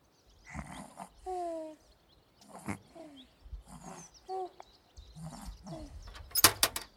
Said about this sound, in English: Nope, I just hear snoring. Oh my gosh, what's gonna wake Hedgehog up?